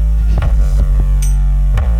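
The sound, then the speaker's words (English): Loud, deep bass booms from speakers in a steady low throb, with a handful of heavier thumps landing at uneven intervals. No one speaks. “Drop the bass real low.”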